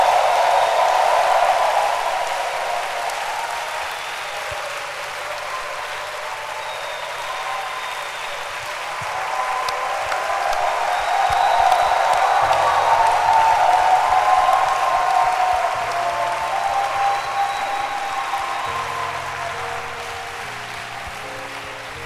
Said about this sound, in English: Hallelujah. Let's clap our hands for the Lord. Are you happy to be in church today? Then show it with the loudest hand clap you can give.